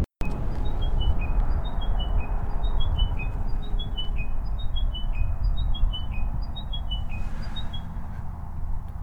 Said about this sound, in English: But I did manage to get some chiming wedgebill calls. So here they are.